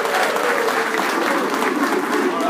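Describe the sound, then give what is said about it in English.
An audience at James Madison University claps for the men there in a steady, dense round of applause, many hands blending into a continuous crackling roar that holds level for the whole stretch. “And let's have one more round of applause for all the guys here at James Madison University.”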